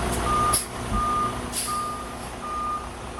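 A bus backs up with its reverse alarm sounding steady, evenly spaced beeps, four in a row, over a low engine rumble and faint hissing air.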